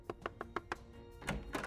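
Knocking on an ex-cop's door: five quick, evenly spaced raps, then a brief pause and a couple of heavier, more muffled thuds. Fairly soft overall, with no voices.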